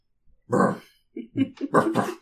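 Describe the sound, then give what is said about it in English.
A big female mastiff dog grunts: one long, throaty huff followed by a quick run of four shorter, chesty grunts, with no talking. “She's a mastiff, so she's a boof. She's a boofer.”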